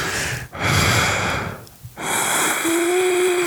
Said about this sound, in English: breathing